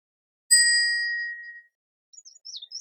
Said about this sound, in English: Now we will ring the bell for those whose names we do not know.